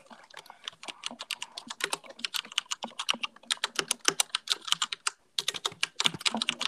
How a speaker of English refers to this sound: Speaking of keyboards, should I go and click on my keyboard a little bit? Yeah, sure. Right. Everyone loves this. This has to be a new podcast segment, right? Where we listen to the glorious keyboard.